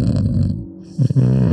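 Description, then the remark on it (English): A person fakes snoring into another person's ear with two loud, rasping inhaled snores separated by a brief pause, exaggerated, with no other talk. “So you're clearly fake snoring.”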